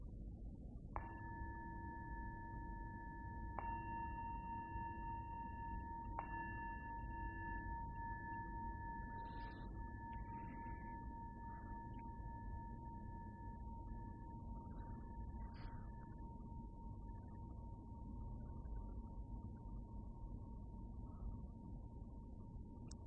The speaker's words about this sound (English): And as the sound of the bell fades, just really come into your body, just as it is right now.